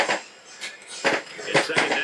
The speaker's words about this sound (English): Oop, dropping my water.